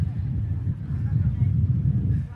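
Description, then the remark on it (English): Strong wind buffets the microphone in a steady, heavy low rumble that fills the whole stretch without letting up, loud, with no clear voice coming through. “I think I actually wasn't expecting it to be this windy.”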